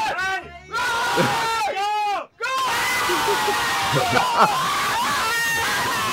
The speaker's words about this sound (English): And then you got the reaction on the bus. I mean, the high-pitched squealing.